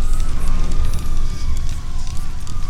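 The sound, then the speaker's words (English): A loud, steady roar of a blazing river of fire, with scattered sharp crackles and pops and a thin, wavering whistle-like tone running through it. “Walking forward, I let the blazing river envelop me.”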